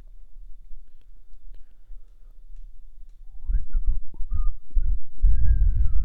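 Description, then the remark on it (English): After a few seconds of quiet room noise, someone whistles into the microphone: a few short sliding notes, then a longer held tone, loud and breathy with blowing rumble. “I'm whistling to the fucking microphone.”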